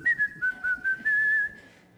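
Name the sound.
person whistling a tune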